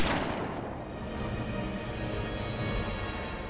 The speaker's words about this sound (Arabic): وفي لحظة اشتد فيها غضبه وتعالت أصوات الرجلين خرجت من البندقية طلقة.